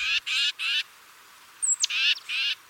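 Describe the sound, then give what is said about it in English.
Titmouse calls: three harsh, raspy buzzing notes, a pause, then a thin high whistle that slides downward, followed by two more scolding buzzes. No voices, and the background is quiet. “Titmice are loud and vocal birds, which could make them particularly easy to follow.”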